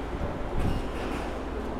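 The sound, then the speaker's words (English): A BART (Bay Area Rapid Transit) train rumbles as it pulls into the station, a loud, steady roar of wheels and motors with a brief swell partway through. “And now I'm at the BART, or Bay Area Rapid Transport Station, waiting for my train, which has just pulled in, and I'll be getting onto it, and then we'll be departing down into the centre of the city where I'm staying.”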